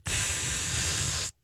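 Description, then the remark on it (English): A voice imitates an aerosol spray being sprayed directly onto a man bag: one steady hiss lasting just over a second, then cutting off sharply into near silence. “This stuff instantly aerosolizes. It's crazy. It's like you cannot feel it. So as I spray it directly on my man bag, I'm like, this is amazing.”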